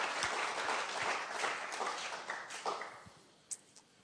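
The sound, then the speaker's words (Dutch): An audience breaks into a dense burst of applause given for Jesus, many hands clapping together loudly, then thinning out toward the end into a few scattered, isolated claps. “Come on, let's give him a great big hand.”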